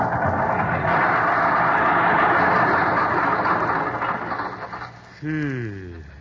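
An old car's motor, the car nicknamed Jenny, runs with a rough, noisy rumble that turns uneven and choppy as it sputters and fades while turning into a driveway toward the garage, followed by a short tonal, voice-like sound at the end.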